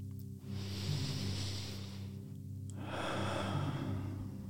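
A long, deep inhale, a short pause, then a slow, full exhale as a person takes a deep breath, with a low steady hum underneath and no talking.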